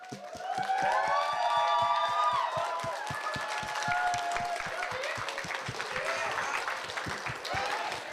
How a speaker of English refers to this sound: I just want to say thank you very much. You guys did a tremendous job. Let's give it a round of applause for the DoubleTree Somerset.